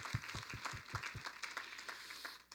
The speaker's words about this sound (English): And whatever happens tonight, the Guardians have outperformed everybody's expectations. Give the Guardians a round of applause. Come on.